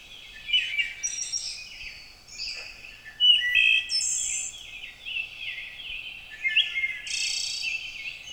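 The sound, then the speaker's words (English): A wood thrush sings a flowing series of fluted, layered phrases, clear, with no one talking over it. “I don't do this often, but listen to this wood thrush singing.”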